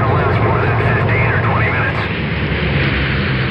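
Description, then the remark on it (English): A loud, steady roar of an airplane in flight through turbulence fills the whole stretch, a dense rumbling wash with faint, muffled voices rising and falling beneath it. “Who is flying this plane? I've been experiencing some turbulence.”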